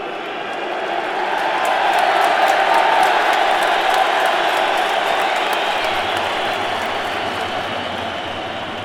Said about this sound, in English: Throughout the game, this player on the Republican side, James McLean, either received a standing ovation and cheers, or jeers and middle fingers. And it wasn't for anything incredible. Here's just the sound of him getting possession of the ball.